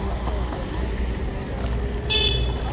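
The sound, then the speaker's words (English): A brief, high-pitched scooter horn honk sounds near the end, over a steady low rumble of engine and traffic noise. “Nigga honked the horn and everything, making sure, nigga, he ain't hit nobody.”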